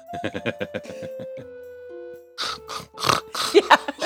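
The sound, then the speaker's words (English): A voice imitates the loud snoring of the character Hadassa, slumped against a tree: a rapid, rattling buzz of pulses at first, then a brief hum, followed by several harsh, breathy snorts that grow louder toward the end. “So Hadassa slumped up against a tree, snoring loudly.”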